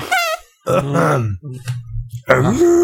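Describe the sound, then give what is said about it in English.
Someone blows loud fart noises with their mouth: a few quick raspy bursts, then a long low buzzing sputter and a final rising squeak, with no words spoken. “That's back and forth farting there.”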